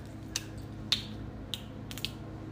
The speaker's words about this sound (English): Let me open my water. Hang on just a second, friends.